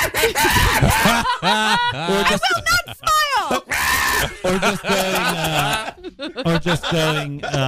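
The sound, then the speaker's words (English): A person loudly imitates a monkey, letting out a rapid series of shrill, rising and falling screeches and hoots in choppy bursts for several seconds, without words. “In my mind, I wanted to be a literal, like. Like a real monkey.”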